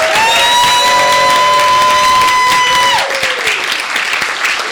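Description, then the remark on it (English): An audience at a reading at Skylight applauds its readers steadily with dense, loud clapping, joined by cheers and a couple of sustained high whistles over the first three seconds before the clapping carries on alone. “All right, one last round of applause for all of our readers in Skylight.”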